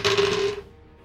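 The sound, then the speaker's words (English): Two six-sided dice (2d6) clatter and rattle across a table for about half a second, then quickly settle into quiet, landing on a total of 11. “These are usually my lucky dice. I ain't been rolling great.”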